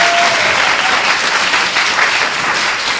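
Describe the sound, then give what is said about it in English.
A crowd claps steadily for about three seconds, a dense, loud wash of many hands with no pauses, carrying a bright, crackly texture from start to finish. “Give everybody a hand.”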